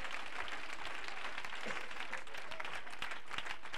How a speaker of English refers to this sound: Clap your hands to the Lord right now.